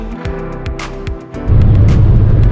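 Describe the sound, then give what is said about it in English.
Steady engine drone and tire rumble of a car cruising at speed on a nearly empty 101 freeway in Los Angeles at about 7:30, with the roar swelling louder and thicker about halfway through. No one speaks. “Nation, welcome to another episode of Random Musings from the Clinical Trials Guru, live from Chris Hopper's car on the 101 freeway in Los Angeles.”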